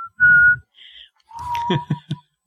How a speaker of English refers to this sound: I can't whistle very well. It's an acquired thing.